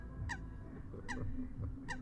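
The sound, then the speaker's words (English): Ducks honk three times at a steady, evenly spaced rhythm, each call short and nasal, over a low rumbling background with no one talking. “See, even the ducks are green.”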